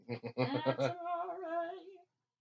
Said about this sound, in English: Hey, stop what you're doing, kitty cat. That was under the house. Oh. Whatever. When there's cats under the house and they're making a racket, that's amore.